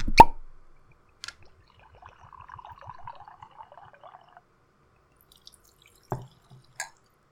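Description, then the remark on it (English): Scotch whisky glugs into a glass for about two seconds, the gurgles rising in pitch as it fills, after a sharp opening knock and before a couple of light glassy taps. No one speaks. “Well, this is the scotch we are going to be drinking, so we should open this up and pour ourselves a glass of it, not just play with it.”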